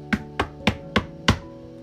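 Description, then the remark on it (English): Five firm knocks on the door of a house in a quick, steady rhythm, fairly loud, each a solid wooden thud, with nothing else heard around them. “After I shut the door, I heard a knock.”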